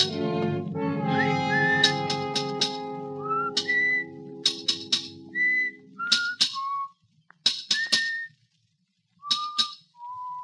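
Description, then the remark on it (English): A cheerful human whistle carries a bright, wandering tune in short phrases, while sharp metallic taps and clinks strike irregularly alongside it: hammer blows and steel meeting stone in a monumental mason's yard. “From the yard itself came a cheery whistle, a noise of hammer blows, and the cold sound of steel meeting stone.”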